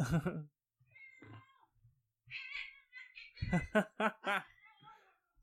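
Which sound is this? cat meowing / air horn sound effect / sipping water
cat meowing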